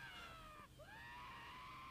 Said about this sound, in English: That's … screaming.